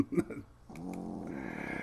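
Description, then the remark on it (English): A sleeping pet snores with a drawn-out, low, buzzy breath that holds steady for over a second, after a few short soft snuffles at the start. “Happy Friday to the sound of snores.”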